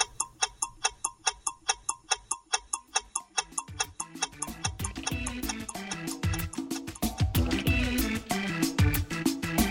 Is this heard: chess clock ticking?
yes